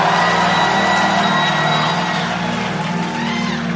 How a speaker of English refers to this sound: Clap your hands and say, by fire, scatter now. Clap your hands and scream and shout to the glory.